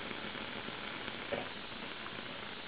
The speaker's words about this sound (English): First, let's ignite the methane gas. Get our Bunsen burner burning.